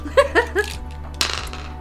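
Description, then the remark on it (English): A few short laughing vocal bursts, then a sudden bright clatter of dice rolling off a desk, tumbling and knocking several times before settling, over a steady low hum. “My dice rolled off my desk, so I re-rolled, and I got a natural 1.”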